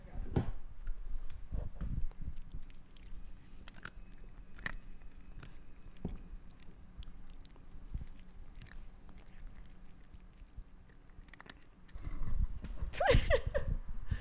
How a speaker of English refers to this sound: You know, he's chewing so loud behind me. I don't hear him.